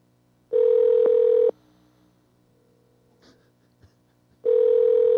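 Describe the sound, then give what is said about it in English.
Two loud, steady telephone tones heard while on hold during a call to the University of Pittsburgh Medical Center, each about a second long, separated by a quiet gap with faint rustling; each tone is a flat mid-pitched hum with harmonics, like a ringback signal on a phone line. “Please hold on, and I'll connect you.”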